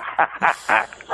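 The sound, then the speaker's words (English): Dogs belonging to one of the speakers bark in a quick burst of four or five sharp barks, spaced unevenly over about a second, with no talking over them. “He has dogs invading his consensus reality right now.”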